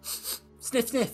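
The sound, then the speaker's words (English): A person imitates a dog sniffing with a couple of quick, breathy sniffs, followed by a short spoken phrase. “Sniff. There is treasure nearby. Sniff.”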